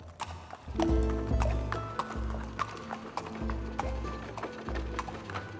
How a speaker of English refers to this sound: In the summer of 1828, 36-year-old William Burke and his friend William Hare led a horse across Edinburgh. But just as the pair reached a crowded part of town, the horse skidded to a stop. His cargo was just too burdensome.